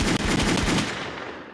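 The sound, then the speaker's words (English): A loud, rapid burst of gunshot sound effects, several quick shots in close succession, then a ringing tail that fades away. No one speaks. “Gunshots.”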